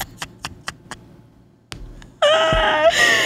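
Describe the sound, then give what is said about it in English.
A few light taps or knocks, then a sudden loud, sustained scream-like wail that holds for about a second, voiced by someone imitating screaming. “So there was this one where it's like when he's going through your phone and he sees videos of you screaming and clawing your hair out.”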